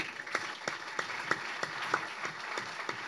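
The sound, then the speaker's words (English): A crowd applauds steadily for about three seconds, with a dense wash of hand claps and a few sharper, evenly spaced claps standing out. No one speaks over it. “Let's clap it up for these guys.”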